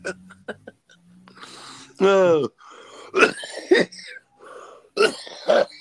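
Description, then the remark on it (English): A coughing fit: a strained, throaty groan followed by several harsh, raspy coughs in uneven bursts, with short gasping pauses between them. “I didn't cough this whole fucking episode, man.”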